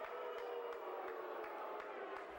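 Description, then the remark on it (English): A wrestling crowd boos wrestler Chad Austin as he comes out, in a steady, sustained wall of jeering voices, low and unbroken, with faint sharp ticks now and then. No one speaks over it. “The crowd's booing.”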